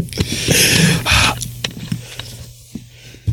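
Water is discreetly tossed out in two quick, hissing splashes, followed by a few faint drips and small knocks amid quiet.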